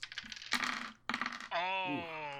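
Dice clatter and rattle across a hard tabletop in a few quick bursts as players begin rolling for the main engagement of a game, followed by a sustained, drawn-out vocal tone.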